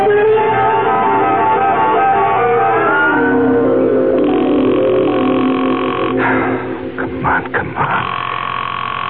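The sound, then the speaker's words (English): A steady telephone dial tone hums with a low drone, then gives way to a few quick clicks and interruptions as a number is dialed, fairly loud, with no talking. “I was just trying to phone Allison.”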